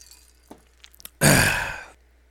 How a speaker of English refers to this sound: Let me take a sip first.